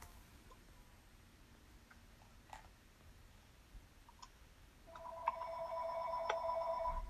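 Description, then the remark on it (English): A home telephone starts ringing partway through with a steady electronic warble that continues to the end, fairly clear, after a quiet stretch with a few faint clicks and no talking. “Uh-oh, my phone is ringing.”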